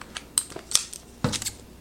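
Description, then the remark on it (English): Snips of scissors slicing open the crinkly plastic wrapper of a Slim Jim snack, a few sharp metallic cuts followed by a longer rustling cut, with no one talking. “I'm gonna get my scissors out here.”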